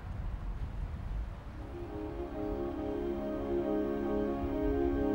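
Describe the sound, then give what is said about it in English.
A train crosses the Tay Railway Bridge, built in 1889, which carries trains from Fife to Dundee. It rolls along with a low, continuous rumble, soon joined by a steady, sustained metallic whine that holds and grows slightly louder. No voices. “The Tay Railway Bridge, built in 1889, carries trains from Fife to Dundee.”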